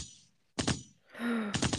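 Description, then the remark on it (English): A voice imitates gunshots heard from down the street in a suburban area: a quick cluster of sharp, breathy pops, then a drawn-out groaning tone, then another rapid cluster of pops, fairly loud. “now that we live in the mountains, I literally hear gunshots today”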